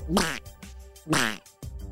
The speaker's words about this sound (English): Ew! Oh! A bird pooped on me! Shouted Jaden.